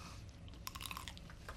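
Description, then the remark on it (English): A crisp crunch as someone bites into a smoked sausage, a quick cluster of crackly snaps followed by a few softer chewing sounds, with no talking. “It's got a nice crisp crunch to it.”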